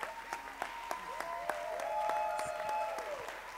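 A church audience claps their hands to the Lord in a steady, even rhythm, roughly three claps per second, over sustained musical tones and faint voices, as a speaker is welcomed to the pulpit.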